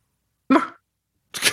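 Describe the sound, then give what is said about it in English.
A person imitates a dog's bark with two short, sharp vocal bursts, fairly loud, separated by a brief silence. “Everyone has their own distinctive dog bark.”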